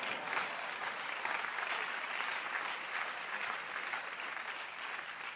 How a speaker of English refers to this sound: And all of us said amen with a hand clap.